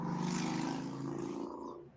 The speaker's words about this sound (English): Nope. It's a motorcycle. ET on a motorcycle.